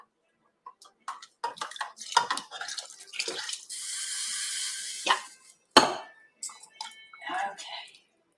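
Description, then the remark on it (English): Water pours steadily into a pot of pumpkin soup with bouillon for a second or so, a hissing, splashing rush amid clattering kitchen noises, with a voice speaking briefly before and after. “So now we're going to add that water, because I'll let you see it in a second.”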